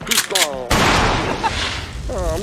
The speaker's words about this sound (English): Yeah. Well, I like the explosion part. That's bad. It's gritty. It's real.